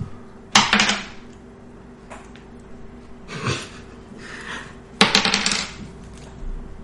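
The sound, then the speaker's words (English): Dice clatter across a hard tabletop twice, each roll a sharp hit followed by a quick rattling tumble, with a quieter shuffle in between and a steady low hum underneath. “Don't roll on paper. Roll on the table itself.”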